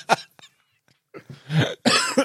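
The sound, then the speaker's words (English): A harsh coughing fit: one sharp cough, a short pause, then a cluster of rougher, throaty coughs building in loudness, with no talking. “I've done well not to cough so far.”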